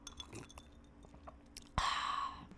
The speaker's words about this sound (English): But let me just take a sip of my vodka water because we are keeping it low cal.